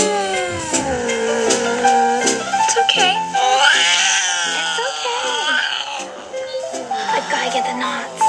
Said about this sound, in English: Cut to Bridget brushing her cat Gizmo, and they insert the insane cat noises.